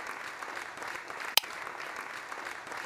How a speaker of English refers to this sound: Dan queued up the crowd applause track and pounded the green button a few times.